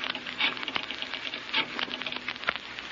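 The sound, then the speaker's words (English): A steady, hissing spray of shower water runs without pause, with small irregular patters and splashes breaking through the even rush. No one speaks. “I was in the shower and thought I heard the phone ring.”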